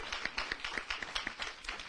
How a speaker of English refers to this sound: Come on, you ought to clap a little bit harder if you know that your family is blessed.